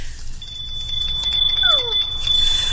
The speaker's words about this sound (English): Daddy, my Christmas bell. You didn't forget it.